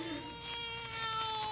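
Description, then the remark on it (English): A cat gives one drawn-out meow, steady and fairly loud, lasting the whole moment, with no voices around it. “Aesop, go away. Get down. …. Ickity-kitty-kitty-kitty.”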